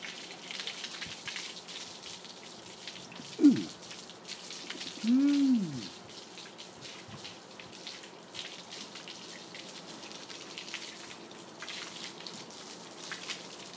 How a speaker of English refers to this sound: Give you a little bit on the legs first. Isn't that nice? Isn't that lovely? Oh, yeah. Cold shower for Louis.